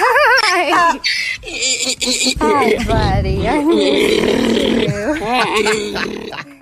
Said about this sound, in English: Here is a donkey super excited to see his owner